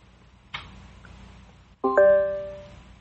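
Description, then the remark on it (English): A soft click, then a short Alexa smart-speaker chime in brief mode after a command to turn off the lights: two quick bright tones that ring out and fade over about a second, with no voices. “Now did you hear that little bee chime? That is all you hear.”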